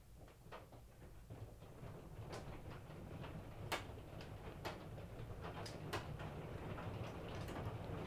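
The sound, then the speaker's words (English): Hail from an early June hailstorm in Utah clatters down in sharp, irregular ticks and cracks over a steady low rumble, the scattered impacts striking unevenly with no voices present. “So you may be able to hear the rain, just it's hailing actually now.”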